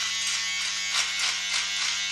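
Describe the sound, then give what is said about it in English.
A steady electric razor buzzes continuously, its bright high whine rising and dipping slightly as it moves across skin, with a faint low hum beneath and no voices. “That's why I'm shaving.”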